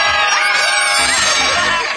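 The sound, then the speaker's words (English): A crowd screaming loudly together when a secret word is said, a dense wall of overlapping high-pitched shrieks and whoops that holds steady at full volume for about two seconds, unbroken. “The rest of the day, whenever anyone says a secret word, scream real loud!”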